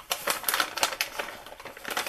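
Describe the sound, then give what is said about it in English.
Whole almonds are poured out of their tall, slim package in a quick, irregular patter of hard little clicks and rattles, a steady clatter lasting a couple of seconds with no talking. “So I'm just going to pour...”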